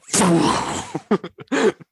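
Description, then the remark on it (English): A voice mimics the shockwave of the meteor impact that killed the dinosaurs: a long, loud, breathy roar followed by several short, choppy bursts of mouth noise that sputter out, with no actual words spoken. “There's a huge shockwave. Shockwave. You feel the wind, and then you hear the.”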